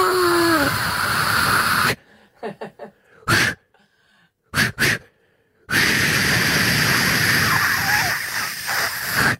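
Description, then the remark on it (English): A voice imitates a can of Mortein insecticide being sprayed at a cockroach. It makes long, loud, breathy hisses broken up by a few short sharp spurts, then one sustained hiss that runs to the end. “Stop spraying that.”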